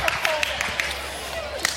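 Scattered hand claps from an audience applauding two participants who showed off their strength lifting a weight, a handful of sharp, sparse claps at an uneven rhythm over a steady low background murmur, rather than a full dense round of applause.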